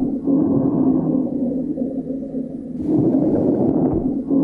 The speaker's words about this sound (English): And this is what a serious case of COVID-19 sounds like.